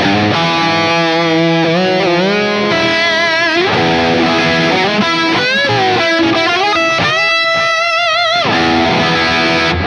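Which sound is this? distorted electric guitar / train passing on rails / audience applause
distorted electric guitar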